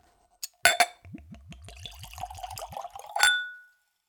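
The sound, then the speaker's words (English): A couple of glassy clinks, then Tanqueray spirit from a brand-new bottle with a metal screw cap glugs neat into a tulip-shaped Glencairn whiskey nosing glass in a quick, steady run of gurgles, ending with a bright ringing clink. Clear, no talking. “And we'll go for a pour.”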